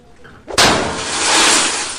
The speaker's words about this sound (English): Takes a snow globe, smashes it through the vending machine to get, well, free Doritos.